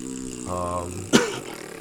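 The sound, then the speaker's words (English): A long, low, buzzing fart that steps up slightly in pitch partway through, then ends with a sharp, wet, sputtering burst before fading out. “It was just one big, long, wet fart.”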